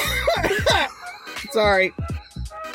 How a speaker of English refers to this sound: Sorry. I coughed.